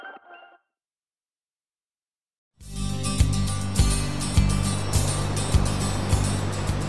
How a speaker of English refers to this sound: Yeah, it's really beautiful. Those waves crashing over there.